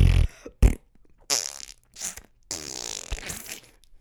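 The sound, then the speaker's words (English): A person imitates wet fart sounds with their mouth as Foley sound effects, making several sputtering, spluttery bursts in quick succession, fairly loud, with short pauses between them. “What kind of fart do you want, sir? For the character who's crying. A wet one. You have to use different parts of your mouth.”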